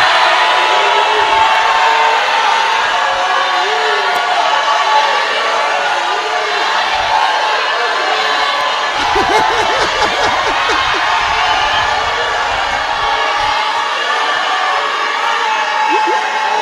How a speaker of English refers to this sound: Amen. That is one. No, that is one. We are shouting seven. Shout hallelujah.